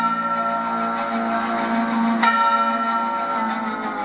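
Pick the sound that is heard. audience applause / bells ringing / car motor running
bells ringing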